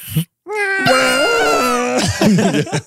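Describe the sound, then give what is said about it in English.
A voice imitates the goat-like screaming noise a pine cone makes when a button is pressed and its petals flip open: a loud, strained, wavering bleat held for over a second, then breaking into several choppy, shorter cries. “It was like a goat screaming noise.”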